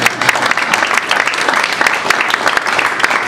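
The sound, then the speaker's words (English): Steady applause from an audience for Larry, a member of Congress being introduced before he speaks; a dense wash of many hands clapping at once, loud and sustained throughout without any voices standing out. “Well, you clap and then he talks.”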